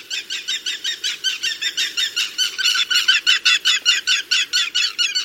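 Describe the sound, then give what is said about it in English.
An Aplomado falcon calls in a fast, steady run of harsh, scratchy notes, about four per second, loud with no pauses and no voices over it. “While work remains to ensure the bird's recovery, the handsome Aplomado falcon appears to have regained a solid foothold in the American Southwest.”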